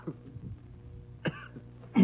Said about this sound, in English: Burp. What is this, like the Howard Stern show? People belching and burping and puking